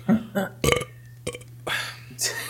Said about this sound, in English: This is great podcast material right here. Take the time. Belching.